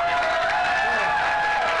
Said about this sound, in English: Oh, we're getting boos and claps.